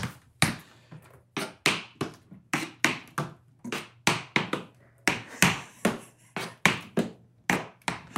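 Tap shoes bought from Amazon shuffle in a slow, steady pattern during a 6 and 10 step combination: sharp, bright metallic clicks, often paired in quick brush-back strokes, repeating about twice a second with no voices.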